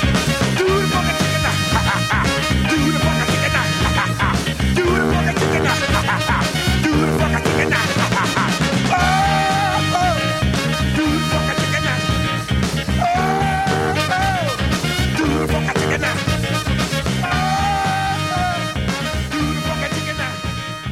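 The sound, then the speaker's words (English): A funk song plays loud and continuous, with a punchy, repeating bass groove, steady drums and bright melodic lines riding over the full band throughout. “I think my favorite lyric in that song is, "I feel so unnecessary."”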